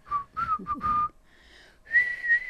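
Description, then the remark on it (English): A woman whistles a short, wavering attempt at the theme tune of The Andy Griffith Show, breathy and slightly unsteady, with a brief pause before a final sustained pair of notes. No talking, fairly quiet. “That's my wife trying to whistle.”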